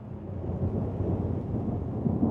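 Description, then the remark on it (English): Deep, continuous rumble of rolling thunder from a storm, fairly loud and steady for the whole stretch, with a faint rain-like hiss layered on top and no voices. “And probably the big clouds eat it, the small one, and then they grow to a big thunderstorm.”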